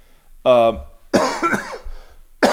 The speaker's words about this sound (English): Going on week number three, some sort of heinous cough. Thank you very much. Heinous. Yeah, whatever bronchioles are involved in that.